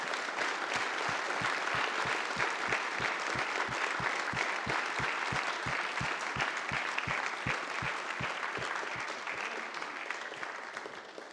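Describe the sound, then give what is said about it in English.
An audience applauds the preacher loudly and steadily for several seconds, with a regular low thumping beat running beneath the clapping, before it starts to taper off at the end. No one speaks. “Nobody ever claps for the preacher. But let's do today.”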